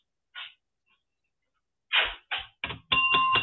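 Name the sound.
doorbell ringing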